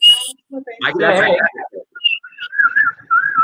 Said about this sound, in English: I can whistle several ways, and I'm real gay. But can you whistle a tune? Yes. I cannot.